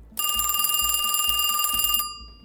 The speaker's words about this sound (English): Female McGuire's landline continues to ring. I should answer this. Excuse me. Female McGuire picks up the phone and walks out onto the balcony.